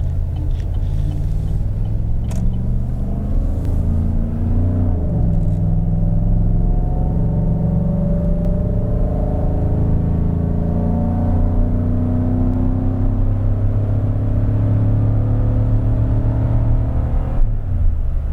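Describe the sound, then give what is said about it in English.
A heavy truck engine drones steadily at 1600 RPM in tow/haul mode while towing a load, a deep continuous rumble with harmonic tones that shift slightly as it pulls, loud with no talking. “We're at 1600 RPM now, and it feels like it's just can handle the load a little bit better.”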